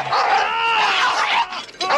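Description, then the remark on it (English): A dog barks and yelps as it pops out of a car door, a loud, strained run of calls lasting about two seconds, with a brief dip before a final outburst. No one speaks. “what pops out of that door? Dog.”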